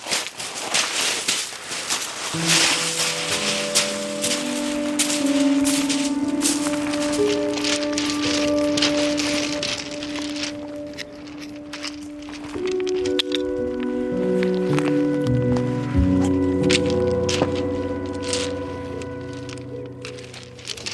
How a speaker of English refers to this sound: Just trying to balance the pan on three stones so it sits over the fire.